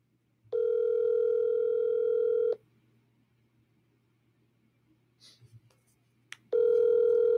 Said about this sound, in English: Partner's not picking up the phone, man. Come on, man. Come on, man. Partner's not picking up the phone, dude.